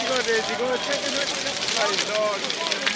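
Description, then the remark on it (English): A large fire crackles and roars steadily as a ship's galley burns after blazing torches are hurled into it, its dense popping noise nearly swallowing a crowd of voices singing together in the background. “They sing another song called The Norseman's Home as the galley burns, and their singing is almost drowned by the crackling of the flames.”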